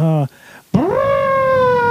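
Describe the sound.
A man vocally imitates an elephant trumpeting: a short low honk, a brief pause, then a loud, rising, sustained high blare.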